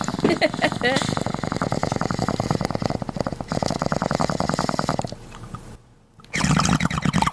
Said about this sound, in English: So cheers, sir. Here's a bong rip to you, sir.